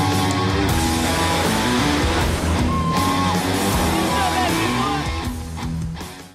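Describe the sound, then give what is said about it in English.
At a mud race, a loud, dense crowd cheers and yells over a steady engine drone as engines roar and mud slings, with a few whoop-like shouts rising above the din before it all fades out at the end. “It's all about the engine roaring, the mud slinging, the just crowd cheering.”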